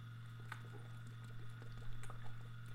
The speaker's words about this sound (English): Excuse me, I had to take another sip of water.